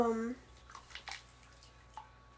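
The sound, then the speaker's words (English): A brief voice at the start, then a few soft, wet squelching and dripping sounds of a girl playing in wet sand and water. The sounds are quiet and irregular. “The noises, it's literally her playing in the sand. Sand water.”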